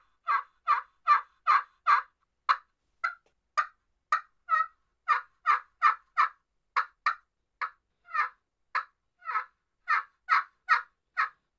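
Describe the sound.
A steady run of about two dozen nasal, raspy turkey hen yelps made on the back side of a friction call, evenly paced and fairly loud, with no talking over them.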